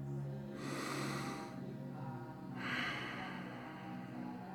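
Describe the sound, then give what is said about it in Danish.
A slow, deep breath drawn in and then let out, two long airy swells of breathing sound, with soft low background tones underneath and no talking. “Tag lige en dyb vejrtrækning.”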